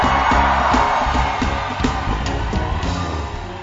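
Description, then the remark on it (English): A large church audience screams and cheers loudly in a sustained, dense, reverberant roar of overlapping voices with scattered whoops and yells, as a pastor is welcomed on stage to give a testimony. “You can do it better. Scream!”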